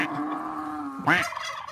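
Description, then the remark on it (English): A keyboard-sampled cow moo: a steady, buzzy low drone that suddenly breaks into a louder, wobbling pitch bend near the end. It plays alone, with no talking. “No, keyboards, when you play a keyboard, you want like a good ghost sound or a dog barking or maybe like a pig or a cow.”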